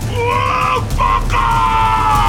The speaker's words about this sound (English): He slices Tane's hands off before he can smash him into the roof again. Tane screams in agony.